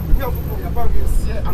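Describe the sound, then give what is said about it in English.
A steady low engine rumble fills the interior of a moving city bus in downtown Accra, Ghana, on a Tuesday morning, as public and private sector workers and traders get on and off, with passengers' voices chattering over the drone. “Public and private sector workers and traders getting on and off the bus.”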